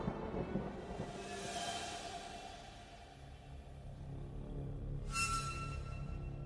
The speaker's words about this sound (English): With a deep clap of thunder, Bathmorda disappeared.